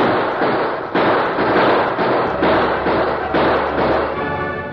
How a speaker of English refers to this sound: Hey, listen. Gunfire, harder.